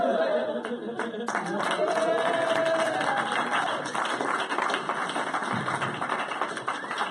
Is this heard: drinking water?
no